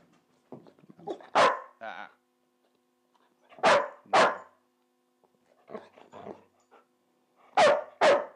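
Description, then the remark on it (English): A frustrated female dog barks in loud, sharp bursts, often two at a time, with softer whiny yips and grumbles filling the pauses between volleys. “I mean, the beauty of dogs like this is that a lot of times they're very smart.”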